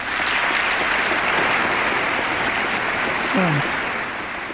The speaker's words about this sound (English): Did you hear that applause? That was in 1995. And may I remind you that Bill Clinton was a Democrat.